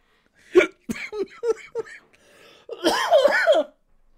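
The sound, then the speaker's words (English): A quick run of five or six sharp hiccups, each a short clipped gulp, followed by a longer, louder voiced sound trailing off into quiet. “I don't know what's more ridiculous right now, my hiccups or your actual real fake frustration.”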